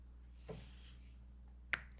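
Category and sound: human body sound, finger snap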